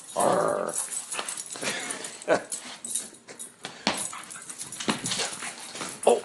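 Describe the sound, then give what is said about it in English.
A four-year-old Lab, pit bull and boxer mix dog named Zobie, with bat ears, growls in low, rumbling bursts, broken by a few sharper snarling yelps; the growling rises and falls irregularly throughout. “Are you mean? Are you a mean dog?”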